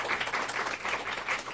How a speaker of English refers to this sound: Can we give another round of applause for Tom? Because he's badass.